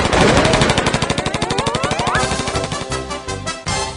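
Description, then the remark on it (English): A gunfire sound effect: rapid automatic gunfire rattles continuously, a dense stream of loud staccato shots with a whining, rising tone layered over the first half before the burst thins out toward the end. “Shoot the lawyer.”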